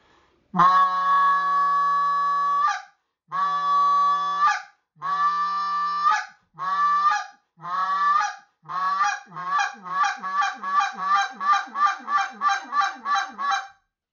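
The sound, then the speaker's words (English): A goose call is blown, opening with a few long honks that shorten and speed up into a rapid run of sharp, evenly spaced clucks, a short exit call. No one speaks. “Now you heard that good sharp, you hear the difference in those clucks.”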